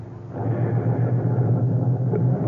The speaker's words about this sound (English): I got out of the car. I stood on the sidewalk and watched him drive away.